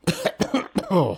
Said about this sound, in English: Sorry, I got a cough.